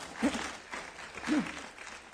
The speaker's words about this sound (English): in this budget, we recommend foregoing the consumer price index increase for 1 year because we are able to meet our pension obligations through these increased revenues. Now, I must sound... You can clap for that, Alderman Lee.